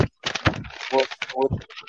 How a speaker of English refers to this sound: I hear a paper.